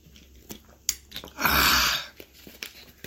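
A brief, loud hissing rush of water pours into a water bottle being refilled for about half a second, framed by scattered small clicks and plastic taps before and after, with no talking.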